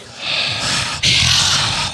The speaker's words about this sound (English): I'm breathing very heavy.